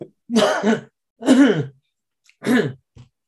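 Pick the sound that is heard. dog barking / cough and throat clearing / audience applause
cough and throat clearing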